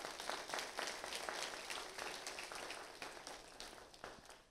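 A group of people applauds in a birthday clap, a dense, steady patter of many hands that holds for several seconds and tapers off slightly at the end, with no talking.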